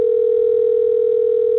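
A telephone ringing tone sounds as a phone call is placed to a person, one steady, unbroken electronic hum, clear and fairly loud, holding the same pitch throughout with no voices.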